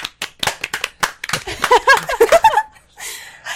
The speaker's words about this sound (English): Round of applause.